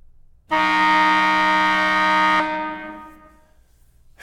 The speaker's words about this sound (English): You heard the horn, guys. That's halftime.